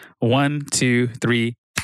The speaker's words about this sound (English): So I'm thinking 1, 2, 3 clap. Okay. But on beat, and you're better at tempo, so hit me with it. Okay. 1, 2, 3. Come on. We'll get it. It'll be fine. Clap. Okay, do it again. But 1, 2, 3, the fourth beat is a clap, okay? Okay.